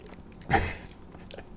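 A single abrupt, breathy gulp of tap water, like a quick swallow or sputter, stands out briefly, then fades into quiet wet mouth noises with no talking.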